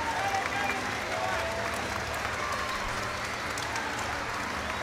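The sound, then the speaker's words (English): A big stadium crowd of Wolverhampton Wanderers supporters applauds steadily as the players make their way off the field, a dense wash of clapping and cheering that holds at an even, loud level throughout, with a faint murmur of voices underneath. “Gary O'Neill, one of those taking all the applause and blowing kisses to his family in the stand.”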